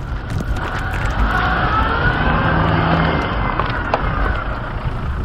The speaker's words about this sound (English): I get in, I start the car, engage the clutch. The car lurches backwards, it slips, and then it finds its grip. I gun it, reverse, with rocks and wood shooting up all around me.